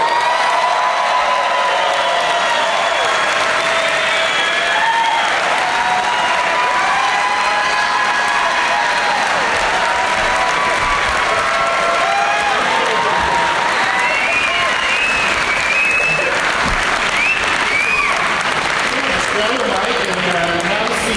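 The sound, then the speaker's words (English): A crowd applauds loudly and steadily for about twenty seconds, welcoming guests Eliza Skinner, Dana Gould and Mark Wahlberg, with scattered cheers and whoops rising above the clapping and some voices mixed in. “Please help me in welcoming, with some applause, Eliza Skinner, Dana Gould, and Mark Wahlberg.”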